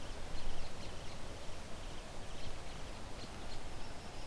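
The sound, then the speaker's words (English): A vulture flies overhead, its wings beating in a series of soft, rhythmic whooshing flaps against a steady wash of outdoor noise. No one speaks. “Those loud wing flaps, I wonder if it was sitting here and took off.”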